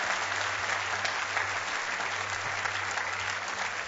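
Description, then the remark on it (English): An audience claps steadily and densely, a continuous wash of many hands that holds at an even loudness for about four seconds, with a low steady hum underneath and no talking. “Don't just be the one clapping, be the one walking.”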